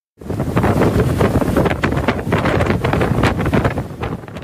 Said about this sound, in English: An extremely windy day at the Mount Washington Observatory in New Hampshire. The observatory recorded its windiest day of the winter season on Wednesday with a peak gust of 214 kilometers per hour.